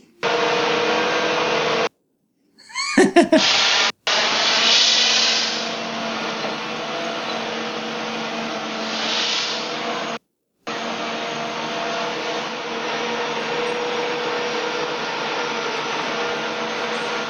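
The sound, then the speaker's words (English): Steady, loud steam hissing from a mechanical steampunk elephant, with a low mechanical hum beneath, broken by two brief silences and a short burst of rattling clicks early on. “It's just shooting steam out of the fucking...”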